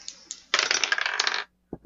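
A couple of light clicks, then dice clatter and tumble across a hard table surface for about a second before settling, followed by a brief low thump; the dice are rolled for an assault in a tabletop game and total 24.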